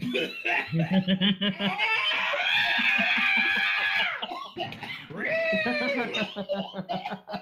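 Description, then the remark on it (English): A cat gives two long, drawn-out meows, each rising and then falling in pitch, with chuckling and laughter mixed in around them. “Fucking adorable cat!”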